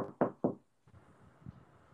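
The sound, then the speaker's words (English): Two firm knocks on a door in quick succession, loud, followed by quieter rustling and muffled movement. “So next thing you know, hear another knock.”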